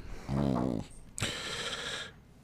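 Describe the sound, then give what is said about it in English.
A dog barks once with a low, throaty tone, then lets out a longer, brighter sustained cry that lasts about a second, and no one speaks. “Tell me there wasn't a knock on the door. There was. Or a dog barking.”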